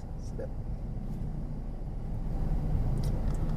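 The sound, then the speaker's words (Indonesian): Steady traffic rumble from idling and slowly moving cars stuck in a traffic jam, a continuous low drone that swells slightly toward the end, with faint muffled voices underneath. “kita kena macet nih.”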